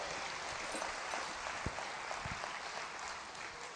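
An audience claps their hands for the Lord in a steady wash of overlapping applause, a dense crackling patter that holds at an even level throughout without anyone speaking.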